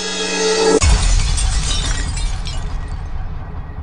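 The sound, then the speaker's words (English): A car crash sound effect: a brief tonal screech cuts abruptly into a loud impact with glass shattering, followed by a few seconds of tinkling debris slowly fading. No one speaks. “car crashes should not be giving you a boner.”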